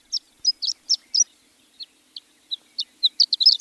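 A horned lark's high, thin song of quick tinkling notes, sparse at first then speeding into a jumbled, rapid burst toward the end, heard clearly and alone.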